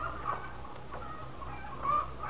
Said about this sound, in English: Sounds like the chickens are extra hungry this morning.